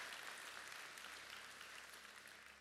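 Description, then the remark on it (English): Many people applauding, a dense, steady wash of hands clapping together at fairly even loudness, tapering slightly toward the end with no voices above it. “That's a good place to clap.”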